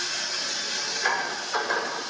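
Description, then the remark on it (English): Bacon shaken around in a hot pan, with three short scraping bursts rising over a steady sizzling hiss. No one speaks. “And just slide it. Shake that up a little bit.”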